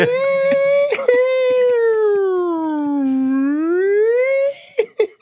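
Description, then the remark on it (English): A voice imitates an ambulance siren with one long, sustained wail that slowly slides down in pitch and then climbs back up, followed by a few short vocal bursts at the end. “You sound like a fat ambulance that didn't make the fucking sports team at school.”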